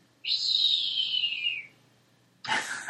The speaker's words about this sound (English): And then he hears, what was that? What was that shrill whistle?